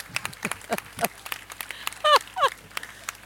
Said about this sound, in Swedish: Det tycker jag var värt en liten applåd faktiskt.